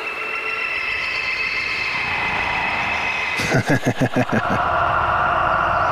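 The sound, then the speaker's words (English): The "sci-fi shimmer" reverb preset on a reverb effects unit: a bright, sustained synthetic wash of layered high tones shimmers steadily, broken midway by a quick run of rhythmic pulsing stutters before the glassy drone settles back in. “Here's the sci-fi shimmer.”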